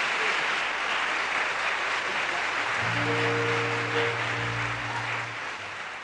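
An audience claps steadily in a dense, continuous wash of applause to welcome a performer. Partway through, a low sustained instrumental tone rises underneath for a few seconds before the clapping tapers slightly.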